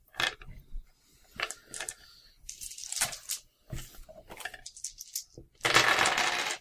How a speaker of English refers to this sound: Here are some dice for your sanities.